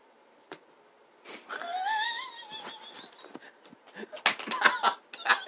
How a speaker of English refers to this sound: That was my bad. I did not mean to slap you in the mouth with tape.